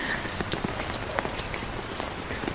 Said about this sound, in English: I hope that you are so warm and cozy and have been enjoying the pitter-patters on the umbrella.